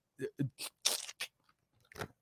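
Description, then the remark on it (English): Sticky laptop keys, soaked with spilled root beer, crunch and crackle as they're pressed, six or seven gritty bursts in an uneven rhythm, fairly loud with short quiet gaps between. “The laptop that Terrence spilled all that look, root beer on. Look, it still has the root beer coming out the back.”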